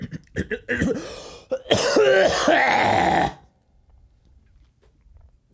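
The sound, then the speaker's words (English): A few short throat-clearing rasps give way to a loud, harsh burst of hacking coughs, lasting a couple of seconds before cutting to near silence. “Sometimes I think I'm just going to clear my throat, and next thing you know, it's like...”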